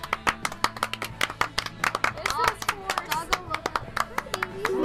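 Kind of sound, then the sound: crowd, people clapping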